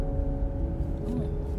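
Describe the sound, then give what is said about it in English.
A steady, low rumbling drone with a faint engine hum fills the space, like riding inside a car driving in traffic, constant and even throughout with no clear speech. “I am in the car, guys, so...”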